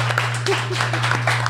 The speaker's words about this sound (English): And, you know, why don't we give a round of applause